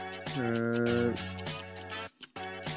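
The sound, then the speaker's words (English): A steady, quick clock ticking pulses at an even rhythm over sustained musical tones as a 60-second game timer runs, briefly dropping out near the end before resuming. “Okay, so let me reset the clock and your time starts now.”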